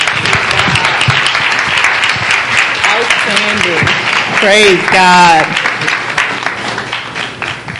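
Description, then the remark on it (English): A crowd claps hands to thank God for a man's life, in sustained, dense applause for several seconds, with voices calling out praise over the clapping. “Now, thank God for his life and clap your hands.”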